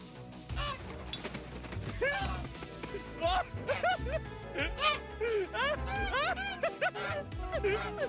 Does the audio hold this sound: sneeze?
no